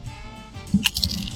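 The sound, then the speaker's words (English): Crunching from someone eating chips with dip during a dip challenge: a few sharp, crackly bites in quick succession after a quiet moment, with soft wet chewing underneath, moderately loud and with no talking. “Crunch, crunch, crunch.”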